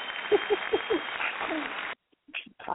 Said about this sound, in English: Yes. A round of applause.